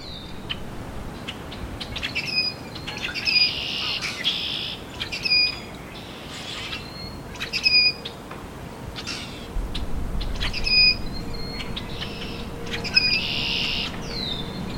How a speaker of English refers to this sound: The rusty blackbird was once an abundant, common blackbird species. In the last 50 years, its population has had a rapid decline, losing between 85 and 99% of its population.